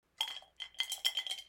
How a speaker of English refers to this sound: We should probably tinkle the water glass with the paintbrushes in about now and slide over to the topic.